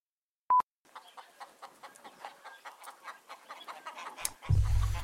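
A short beep tone, then a chicken clucking in a quick, uneven series of clear clucks, cut off by a sudden loud low rumble at the end.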